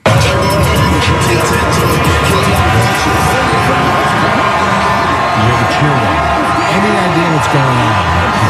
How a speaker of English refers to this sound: All right, it's just crowd and crowd noise. This is obviously from the Chiefs parade from yesterday through Kansas City.